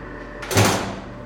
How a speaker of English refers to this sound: Jail doors slam shut and keep offenders off the streets.